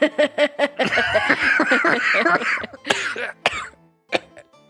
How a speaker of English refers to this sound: … just coughs, hard, hard coughs.